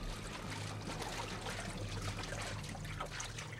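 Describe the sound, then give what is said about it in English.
Water pours and splashes steadily with a continuous gushing rush, moderately loud, alongside a low mechanical hum throughout. “Oh, oh, water!”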